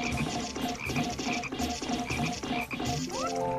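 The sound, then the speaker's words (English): A frog in the video game Pikmin croaks in a steady, repeating rhythm, about two croaks per second, loud over a busy background, with a brief rising electronic tone near the end. “I see another frog. I'm gonna let it come toward us.”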